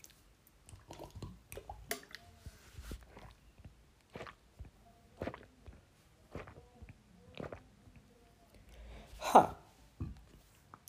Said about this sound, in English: Because I'm gonna drink some water now, so.